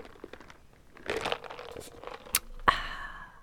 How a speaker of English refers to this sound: I'm gonna do some coffee ASMR. Do you hear the ice cubes of my coffee swirling around? Tap, tap, tap, tap.